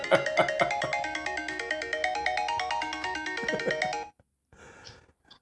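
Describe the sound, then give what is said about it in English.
A phone ringtone plays a bright, repeating electronic melody with rapid rhythmic notes for about four seconds, then cuts off, followed by a brief faint rustle. “Saved by the bell!”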